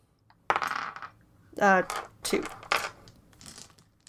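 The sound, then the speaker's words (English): Dice rolled for a history check in a game tumble and clatter across a hard surface in a few quick, rattling bursts, moderately loud, with a short voiced exclamation breaking in partway through. “And do we, you could try to roll a history if you want to know if you know anything about that, or you could roll a religion as well.”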